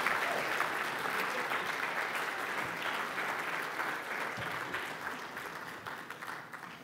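An audience applauds a group coming up on stage before heading to Alaska for a week of mission work, with steady, dense clapping that holds at a fairly even level for several seconds, then thins slightly toward the end, with no voices rising above it.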